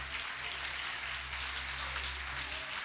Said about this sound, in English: We can do better than that. Give a hand clap of praise unto the Lord.